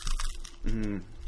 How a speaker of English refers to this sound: Hear that crunch. The crunch.